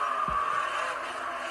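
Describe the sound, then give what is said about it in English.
Race cars roar in a steady, dense engine drone at Phoenix. Near the start, a brief low thump comes as three cars bunch up accordion-style and collide in turn one, leaving one car with heavy left-rear damage; no voices. “That was an accordion-style threesome down in turn one, and Alex Bowman got the worst of it.”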